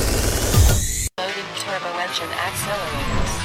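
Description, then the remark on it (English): A loud turbo engine roars and revs up for about a second, cuts out abruptly, then comes back with a wavering, high-pitched tire squeal and engine whine that continues steadily to the end. “Loaded turbo engine accelerators.”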